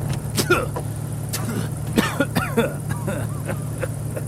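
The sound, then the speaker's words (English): An old rattling jalopy car drives along with a steady low engine drone and intermittent rattling clatter, moderately loud, with a few brief voice-like sounds over it. “But you'll have to bear this rocky jalopy for a little while, won't you?”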